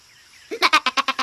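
A goat bleats once, fairly loud, its voice breaking into a quick, wavering tremolo of about six pulses before stopping. No one speaks.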